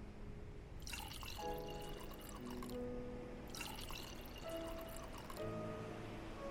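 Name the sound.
water poured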